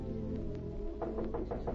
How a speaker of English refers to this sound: A few hours later, M knocked on her door.